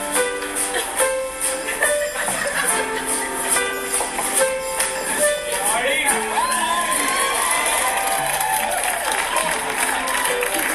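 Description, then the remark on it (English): A loud audience yells and cheers continuously, many overlapping voices shouting over a dense crowd roar that stays strong for the whole stretch. “now you hear the people yell for Artie to watch it”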